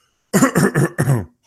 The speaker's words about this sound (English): Make the cough noise a second time. Oh, here we go.